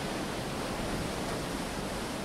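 A steady, unbroken wash of ocean surf and wind, soft and even throughout with no distinct wave breaks, like a continuous low roar.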